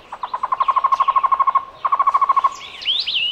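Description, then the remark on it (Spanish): A Cuban trogon (tocororo), the national bird of Cuba, gives a rapid, rhythmic series of hollow repeated notes in two clear bursts, followed by thin higher whistles from other birds at the end. “Este es el tocororo, el ave nacional de Cuba.”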